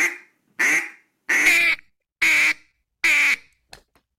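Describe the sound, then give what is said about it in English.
A duck call blown, giving five loud, nasal, buzzy quacks in a steady, evenly spaced rhythm, then a faint click as it stops. No one speaks. “Yeah, one quack. Just one quack.”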